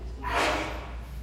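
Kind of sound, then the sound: human body sound, sneeze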